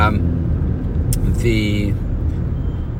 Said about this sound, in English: Hold on, a bus was coming across in front of me there.